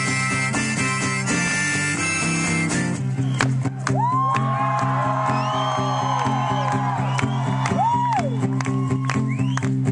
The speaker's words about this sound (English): Stop clapping.